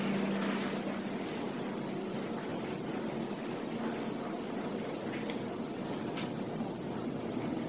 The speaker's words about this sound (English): Airplanes flying overhead. Not just the one we hear right now, but many, many thousands of airplanes of different sizes and shapes and helicopters.